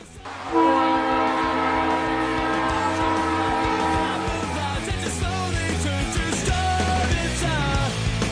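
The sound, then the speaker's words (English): A train horn blares with sustained, layered tones for several seconds as the train rumbles past, the heavy rolling noise continuing after the horn fades. “So we'll just have to replay that train sound right here.”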